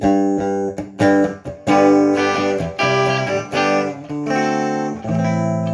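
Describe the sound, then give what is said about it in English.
A bright, buzzy synthesizer using a sample and a very sharp, high-pitched sine wave plays a choppy sequence of sustained chords and notes with sharp cutoffs, evoking a retro video game console sound. Loud, no voices. “That sounds like Super Nintendo.”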